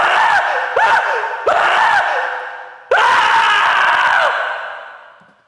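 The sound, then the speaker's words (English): A man screams loudly in a series of short, strained bursts, then lets out one long drawn-out scream that slowly fades away, with no talking around it; the Michael Wong scream from the film Overheard. “writing team who brought us Infernal Affairs and Confessions of Pain and Overheard, which gave us the greatest Michael Wong scream ever.”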